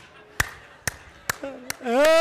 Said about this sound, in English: Hey, all right, yeah, yeah, yeah. Yes, thank you for clapping.